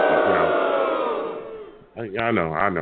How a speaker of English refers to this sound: I know. I knew I was going to get booed by the people. I understand.